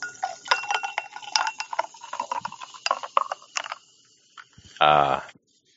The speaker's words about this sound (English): I'm gonna pour it into some ice right now too.